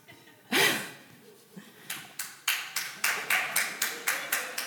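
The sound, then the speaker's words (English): One person claps a steady run of about ten sharp hand claps, evenly paced, after a single louder burst of breathy noise at the start. No one speaks. “I don't know if that's a clap for cake.”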